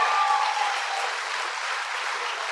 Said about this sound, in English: You don't have to clap. You can clap for this.